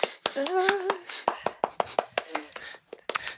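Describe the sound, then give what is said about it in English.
Sparse, scattered hand claps from a small group, a dozen or so irregular sharp slaps over a few seconds, with a brief voiced murmur in the background early on. “Clapping's polite.”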